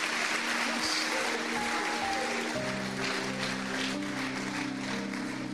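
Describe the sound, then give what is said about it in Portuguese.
An audience claps steadily for several seconds for a person who answered a question, a dense, even wash of many hands with no clear pauses, while sustained voices hum or call out underneath. “Palmas para ele, palmas para ele. Clap for him.”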